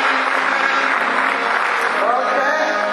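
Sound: audience clapping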